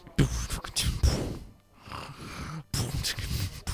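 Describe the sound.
A voice mimics snoring, beatbox-style: loud, raspy snorts and hissing breaths in a few bursts, separated by a soft lull and a brief silence.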